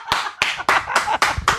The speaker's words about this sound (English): clapping like the seal that he is.